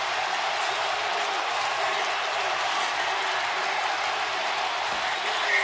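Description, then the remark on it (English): A huge Oakland Athletics baseball stadium crowd roars in a steady, dense wall of cheering and applause after Hatteberg's home run wins a 20th consecutive game, holding at full loudness throughout, with no individual voices standing out. “The crowd comes back to insane life.”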